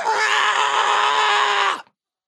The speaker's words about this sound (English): So what I'm going to do is I'm going to grab the bottom of my red and gold mystic robes. Okay. And I'm going to run away screaming at the top of my lungs.